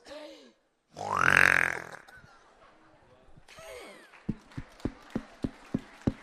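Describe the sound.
A woman's voice imitates a pig, starting with a loud, harsh snorting grunt, then a run of short, evenly spaced rhythmic grunts with a rasping, nasal quality.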